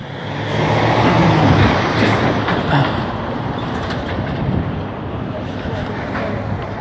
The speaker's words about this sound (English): Fuck, there's traffic and there's not really a sidewalk to be walking here, so it's pretty dangerous. And it's already dark.